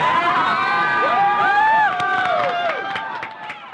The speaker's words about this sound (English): Big applause.